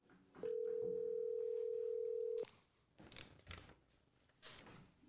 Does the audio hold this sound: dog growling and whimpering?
no